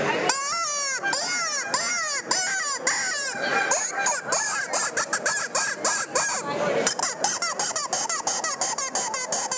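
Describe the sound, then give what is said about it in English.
A predator game call plays a demo of an imitation fawn bleat, a call used for hunting dogs: loud, high, wavering cries repeated rapidly and almost continuously, with sharp breaks between short bursts and no talking. “Listen to that fawn bleat.”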